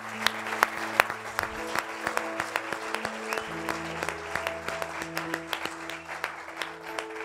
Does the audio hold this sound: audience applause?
yes